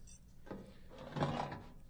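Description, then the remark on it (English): A wooden drawer holding a small tin dispatch box at the back scrapes and rattles as it is pulled open, a rough sliding sound in two short pushes with no one talking. “Here, in the back of the drawer, a small tin dispatch box.”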